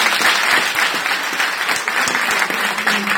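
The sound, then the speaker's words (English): Steady, loud applause from a large audience clapping for the Moravians, dense overlapping hand claps filling the whole stretch without a break and no voices standing out above it. “Clap for the Moravians.”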